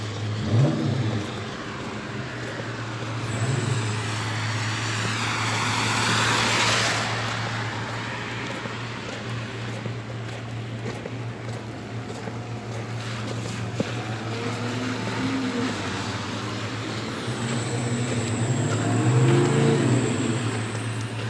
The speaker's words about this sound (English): Oh, never mind. He's trying to rev up his car because he's cold and get that heat going.